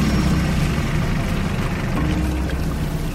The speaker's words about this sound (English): Starting up the engine to my boat, I started to drive it towards the middle of the lake.